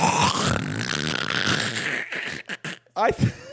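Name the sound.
imitation of loud snoring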